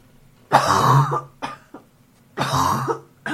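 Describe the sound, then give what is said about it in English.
A harsh asthmatic coughing fit from a seated person: two long, raspy, wheezy coughs separated by shorter hacking coughs, loud and strained, with no talking. “I'm gonna sit here and cough.”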